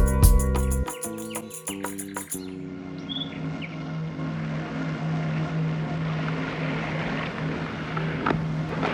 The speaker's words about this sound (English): You look out over this tremendous water. Green, blue, and as it comes in and you hear it, just absolutely beautiful. I'm sure you can hear that.